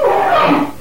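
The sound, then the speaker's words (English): A loud orangutan call: a single drawn-out, hoarse tonal cry lasting under a second that slides slightly downward in pitch and fades near the end, with no talking. “A handful of folks say they've heard the call of an escaped ape.”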